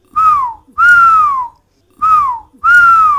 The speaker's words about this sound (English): felt happy and whistled.